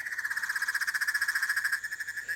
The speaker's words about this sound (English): Yeah, it's the red-eyed tree frogs that I'm thinking of.